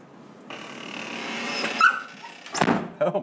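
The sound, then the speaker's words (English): A dog in a crate whines in a thin, high, sustained cry, then lets out a few sharp barks and yips near the end, moderately loud, with no one talking. “Because I mowed the grass yesterday, and he was perfectly fine running around the yard, acting like a dog. Yeah, this is typical crate stuff.”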